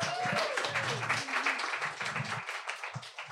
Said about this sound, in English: Are you guys ready to get your hearts wrenched? I am. This is big, big, big, big applause